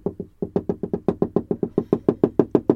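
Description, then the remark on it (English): A rapid series of hollow knocking taps, about sixteen in under three seconds, steady and fairly even in rhythm, resonant and woody, from ducks pecking algae off the side of a boat. “We'll eat the algae off the side of my boat, which is fine.”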